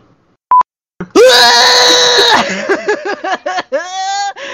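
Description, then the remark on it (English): After a brief electronic beep, a person reenacts a pterodactyl-like screech: a loud, shrill, sustained cry, then warbling squawks and a second piercing shriek. “And I basically had a pterodactyl screech on the bus.”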